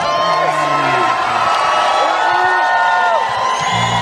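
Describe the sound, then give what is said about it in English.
A large crowd in Prescott Valley, Arizona, cheers loudly and steadily for gubernatorial candidate Carrie Lake, with whoops and shouted voices rising and falling over a dense, continuous roar of applause and yelling. “Wow, this crowd.”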